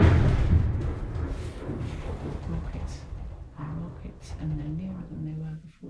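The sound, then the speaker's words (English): An incoming shell explodes very close in Gaza with little whistle before it: a sudden heavy blast opens with a deep, booming thud, then rolls into a long low rumble as voices rise and call out over the fading roar. “That feels very close. You don't get to hear much whistle before it comes.”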